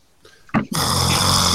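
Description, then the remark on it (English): A person imitates snoring: a faint breathy rumble, then a sharp snort, followed by a loud, sustained noisy burst as if jolting awake. “That was me snoring and waking up.”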